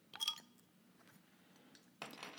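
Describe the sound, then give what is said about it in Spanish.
A bottle being opened with a bottle opener: a sharp metallic clink against the cap, a quiet pause, then a brief bright burst of fizzing release, fairly quiet. “Nótese que ahora tengo destapador y no tijera.”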